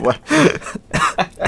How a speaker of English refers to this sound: Wow, you're making me cough.